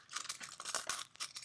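Car keys jingling as a Foley sound effect, in quick, irregular bursts of bright metallic clinks and rattles for about a second and a half, fairly soft with no voices.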